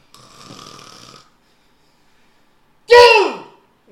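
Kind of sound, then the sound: vocal imitation, person imitating snoring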